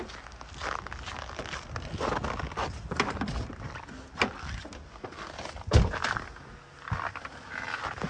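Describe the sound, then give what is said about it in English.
The door of a cold Tesla in winter is slammed hard, one loud, heavy thud standing out among a series of lighter clunks, knocks and rustling handling sounds, with no one speaking. “So, right now, wow, that was really a hard slam for a cold car.”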